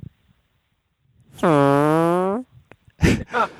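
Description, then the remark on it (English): A single loud, drawn-out buzzing fart noise lasting about a second, imitated with the mouth, followed shortly by a couple of brief vocal bursts. “Like every time we would fart.”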